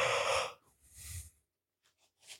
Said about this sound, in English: I don't know why I got so yawny right there. Yawn. Yeah. I've been so tired lately.